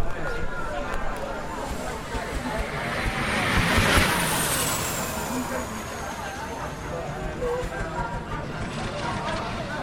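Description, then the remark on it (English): A Lotus gas turbine racing car passes with a steady rushing roar and a high, thin whine that swells to a peak around the middle before easing off, with indistinct voices murmuring underneath. “That was the Lotus gas turbine car footing its way along.”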